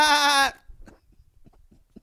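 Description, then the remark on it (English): A goat lets out one loud, wavering bleat lasting about half a second, then only faint, low background murmurs and rustles remain. “What was the goat saying when you watched?”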